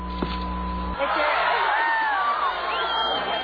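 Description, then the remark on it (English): A brief steady hum gives way to a burst of crowd cheering, with rising whoops and whistles over a dense wash of voices that stays loud for several seconds. “What is the one, two, and the cheering?”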